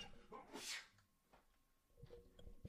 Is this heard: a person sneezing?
yes